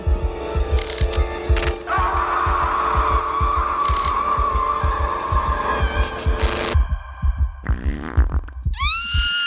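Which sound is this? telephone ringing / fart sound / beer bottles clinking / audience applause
fart sound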